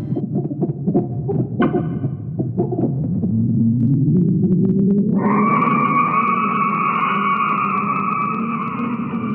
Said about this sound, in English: Ooh, now we're inside a nebula. Listen. Isn't that so spooky? It's real. NASA took images of the Helix Nebula gathered up by the Hubble telescope and converted them into sound.